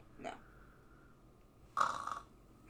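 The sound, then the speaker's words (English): Two rasping snores from a man: a short, softer one at the start, then a louder, longer snort-like snore after a pause, with no talking in between. “snoring”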